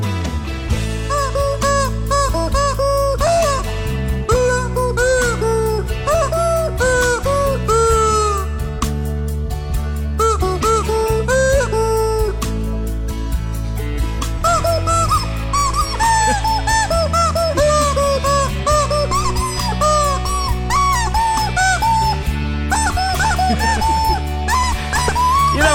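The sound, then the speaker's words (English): A rubber chicken squeaks and squawks into a microphone, karaoke-style, in loud, repeated bursts with bending, wavering pitch, playing over a steady musical backing for the whole stretch, with no talking. “It's you know those rubber chickens? Yes. Well, it's like a rubber chicken at a karaoke night.”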